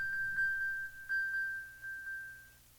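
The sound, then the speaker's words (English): An electronic phone chime: a single steady, high-pitched tone held for about two and a half seconds, with a few soft pulses along it, heard alone with no talking. “That was different because it's like a cell phone kind of thing.”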